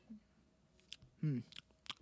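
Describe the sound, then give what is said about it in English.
Quiet, wet chewing sounds: a few smacking, squishy bites spaced irregularly, with a brief low hum from the mouth midway, like someone working on a piece of gum. “I just acquired said testicle, and I will just periodically chew it like it's gum.”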